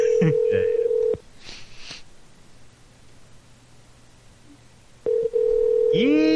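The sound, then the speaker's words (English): A telephone line with a steady dial tone and quick dialing beeps as a call is placed to Economy Lock and Key, a store that makes keys, then a few seconds of soft hiss and rustling before the tone returns, ending in short rising electronic tones. “Thank you for calling Economy Lock and Key.”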